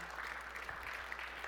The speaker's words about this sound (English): I liked the little golf clap. That's awesome. No, it's like, it is. A few woos in there.